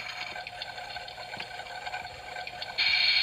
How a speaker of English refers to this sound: We put water in this little hole. Real water. We put water in the hole.